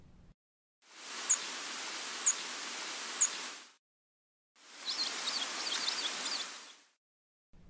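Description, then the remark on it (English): Tree sparrow calls: three sharp, high tip notes about a second apart over steady background hiss, followed after a short gap by fainter, quicker chirps in the hiss. “It's common to first notice the tree sparrows by their calls, a sharp tip, and a slightly less common, warbled, sweet-lit.”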